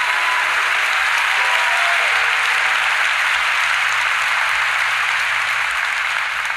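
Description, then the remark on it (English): An audience claps hands to the Lord in a steady, dense wash of applause that holds at an even loudness for several seconds, with a faint tonal hum underneath. “Come on, if you believe that, clap your hands to the Lord.”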